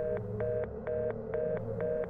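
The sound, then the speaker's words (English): A telephone line signal: a steady tone with short electronic beeps pulsing in quick, regular rhythm over a low hum, fairly quiet, with no one speaking. “The phone went dead.”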